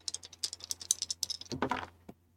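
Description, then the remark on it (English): A rapid run of small, sharp clicks and clatters, then a louder tumbling rattle and one last tap, like dice shaken and rolled across a table for an empathy insight roll, with no talking. “Try some different dice, because those ones were mad about something.”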